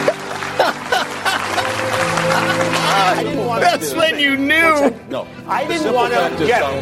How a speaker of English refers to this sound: Please clap.